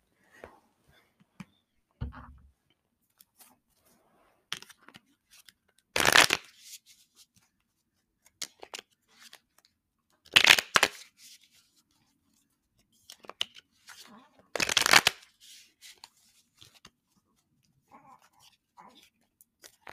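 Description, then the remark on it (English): Three brisk bursts of a tarot deck being shuffled, each a short crackling riffle about four seconds apart, with faint card taps and handling noises in between and no talking. “And I can shuffle better.”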